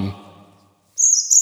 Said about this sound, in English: Is that a bird? Oh, I think it is. Oh, they must be up in the rafters.